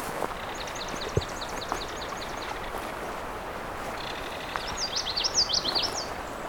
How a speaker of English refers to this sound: I think there's multiple kingfishers here.